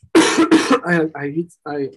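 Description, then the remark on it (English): Two quick, harsh coughs, followed by a stretch of voiced throat clearing and a short hum-like grunt, fairly loud and isolated; the coughing is caused by a small allergy. “Sorry, I'm coughing.”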